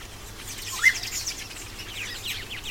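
A birdsong sound effect played on a Rodecaster: a busy chorus of high chirps and tweets, with one brighter call standing out early, over a steady low hum.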